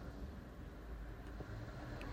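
Steady low rumble of a car interior, a constant muffled drone filling the background with no voices, quiet and even throughout with only faint brief ticks near the end.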